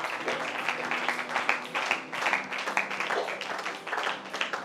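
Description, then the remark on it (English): A standing audience claps hands in praise of the Lord, a dense, steady wash of overlapping claps lasting several seconds at a fairly even loudness, with a faint low hum of voices or music underneath. “Let's give him a hand clap of praise right now.”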